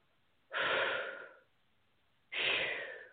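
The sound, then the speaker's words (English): Two loud, heavy breaths, each a long airy rush lasting about a second, separated by a short pause, with no talking. “I'm doing a lot of breathing.”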